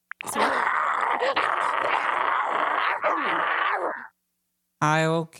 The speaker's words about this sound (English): Wolf number four.